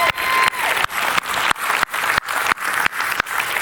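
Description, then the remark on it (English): A crowd applauds loudly and steadily for the band after its worship set, a dense wash of clapping that swells and dips in a regular pulsing rhythm, with no voices heard over it. “And keep your applause handy.”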